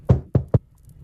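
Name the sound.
knocking on a door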